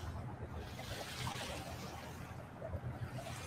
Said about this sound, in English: Listen to the waves.